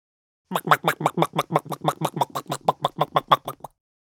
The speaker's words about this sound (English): Chicken walking briskly.